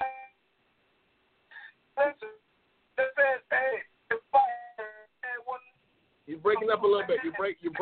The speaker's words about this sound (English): You're breaking up a little bit. Move your phone or do something.